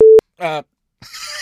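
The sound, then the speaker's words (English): A brief, loud censor bleep, one flat steady mid-pitched tone lasting a fraction of a second, cuts over a swear word, followed by a short burst of a man's speech and then a hissy, noisy voice. “Dang, you're gonna make me beep that out.”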